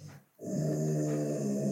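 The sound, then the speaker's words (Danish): A dog growls low and steadily, a sustained rumbling snarl that starts after a brief pause and continues without break, no speech present. “Jeg tror, at din hund er enig.”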